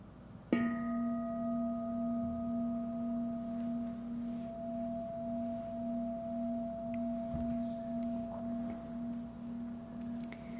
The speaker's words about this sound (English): With the sound of the bell, we'll close our practice.